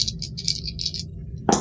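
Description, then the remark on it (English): Three dice rattle and clatter in short bursts, then spill with a brighter final clack at the end, with no talking; the dice are rolled for the ship. “And someone want to roll for the ship?”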